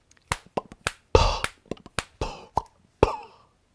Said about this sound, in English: I pitched to him on the phone that the organic human nature of his voice telling jokes might blend well with the organic human nature of my human lips, tongue, finger snaps, like this.